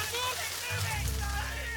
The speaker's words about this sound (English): And at his very declaration of the word drought, the sky darkened and sheets of rain fell, triggering what has come to be known as the flood to end all droughts.